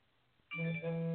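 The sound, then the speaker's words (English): A mobile phone vibrating: after a quiet moment, a loud, steady, low electric buzz starts abruptly and holds for under a second, briefly dipping once. No one speaks. “why did you vibrate my phone more?”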